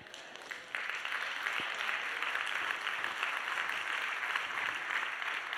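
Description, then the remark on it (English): An audience applauds a speaker's statement during a talk, a dense crackle of many hands clapping that swells just after the start and holds at a fairly even level throughout, with no voices breaking through. “I'm going to say it again because you clap.”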